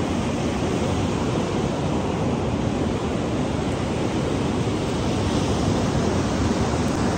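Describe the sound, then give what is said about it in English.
Ocean waves wash ashore in a steady, full-bodied roar of surf that stays at an even level throughout, with no distinct breaks between swells and no voices. “Oh, the water is getting close.”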